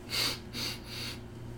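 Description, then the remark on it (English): Three quick, raspy snorting breaths through the nose of a man whose sinus cavity was broken by a punch, each a short hissing burst in a steady rhythm, fairly quiet with no talking. “like, the fucking weird, like, breathing shit.”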